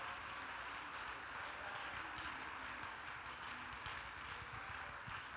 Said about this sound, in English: Come on, let's clap our hands and praise that God tonight.